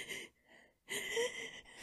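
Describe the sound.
A voice imitates panicked, gasping breaths as if unable to breathe: a sharp breathy intake, a brief quieter pause, then a longer, louder run of ragged, heaving gasps with no words.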